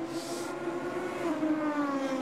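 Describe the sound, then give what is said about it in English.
GT race car engines roar steadily on track during the first round of the Japanese Super GT Championship, with a high, buzzing whine that shifts in pitch as they pass, loud, with no one speaking. “This is good sounding cars. These are really good sounding cars.”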